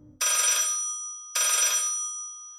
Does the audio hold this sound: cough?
no